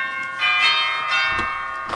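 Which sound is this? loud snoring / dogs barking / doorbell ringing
doorbell ringing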